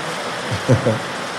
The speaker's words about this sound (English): It's just here. The rain is just here. You can feel the rain there.